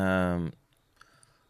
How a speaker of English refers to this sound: Why am I clicking on that?